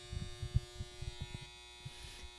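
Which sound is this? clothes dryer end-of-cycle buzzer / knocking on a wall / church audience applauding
clothes dryer end-of-cycle buzzer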